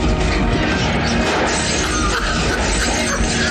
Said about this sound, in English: Like they knocked him into a bunch of barrels or crates or something. Boxes. But you hear all these different sounds.